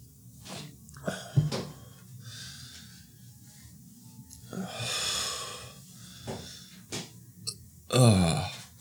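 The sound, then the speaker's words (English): A short, throaty burp erupts near the end, preceded by quiet breathy and mouth noises in an otherwise hushed setting. “Well, sorry, I thought I was going to burp, and then I didn't, but then I did, and I think I still have some in there.”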